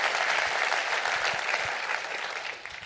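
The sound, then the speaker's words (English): A crowd claps steadily, many hands blending into a dense, bright wash of applause that stays loud throughout and fades slightly at the end. “Clap your hands and say, "I want a generosity of forgiveness."”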